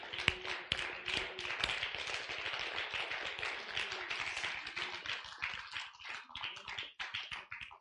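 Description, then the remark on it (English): A crowd claps their hands together as a hand clap of praise to the Lord, a dense, steady burst of many overlapping claps that keeps going at an even level with a few sharper individual smacks standing out. “And all the time, give him another hand clap.”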